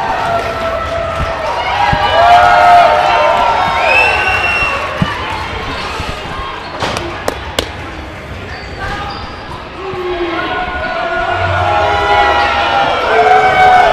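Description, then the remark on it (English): A loud arena crowd at a Combat One event cheers and shouts steadily throughout, many voices blending into a dense roar, with a few sharp thuds or bangs cutting through partway in. “Crowd's going heavy on Crystal.”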